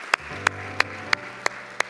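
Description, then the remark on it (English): Applause for three individuals who raised their hands comes through as six sharp, evenly spaced claps in a steady rhythm, each crisp and bright, with a faint low hum underneath and no voices. “Can we give these three individuals today to raise their hand a huge round of applause?”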